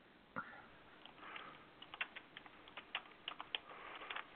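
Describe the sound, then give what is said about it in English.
Quick, irregular clicks of a man typing on a computer keyboard, fairly quiet, with short bursts and pauses between keystrokes and no talking. “And he's typing. And he's typing.”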